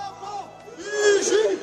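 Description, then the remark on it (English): A crowd clashing with police at the scene of a shooting in Paris, with several raised voices shouting and calling over one another, growing louder toward the end, with no clear words. “Large crowds gathered at the scene before clashing with police.”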